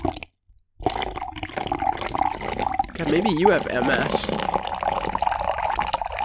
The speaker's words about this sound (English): Dumps water on his carpet.